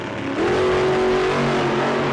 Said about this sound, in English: What's that noise? Is someone driving a motorcycle onto this meticulously replicated 50s diner set? That seems out of the ordinary.